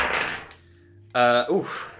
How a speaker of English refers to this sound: 68. Why waste a better dice roll? So yes, that is a mild success in archaeology.